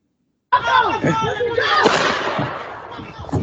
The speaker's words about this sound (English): That truck, because that was that gunshot there. That's what killed her.